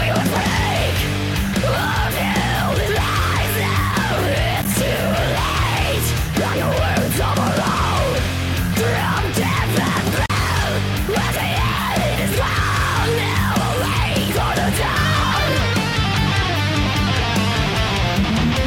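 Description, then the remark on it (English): A harsh, distorted metal-style scream, loud and sustained in repeated swooping bursts, over a dense, driving heavy music backing that continues throughout. “I like that you went with that metal scream.”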